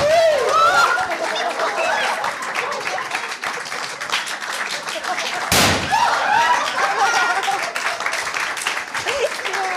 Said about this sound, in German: Wir wurden gerade mit Konfettikanonen beschossen.